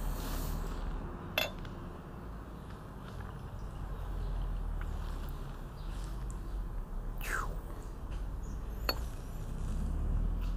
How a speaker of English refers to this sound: Let's pour us some more dark matter.